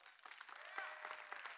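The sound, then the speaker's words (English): An audience breaks into applause as a straw poll of how many already have their Christmas lights up, many hands clapping in a dense, steady patter that holds at an even, moderate level for the whole moment, with no clear voices standing out. “So by a round of applause, how many of you already have your Christmas lights up?”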